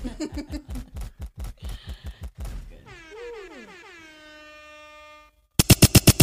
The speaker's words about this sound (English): Gunshots.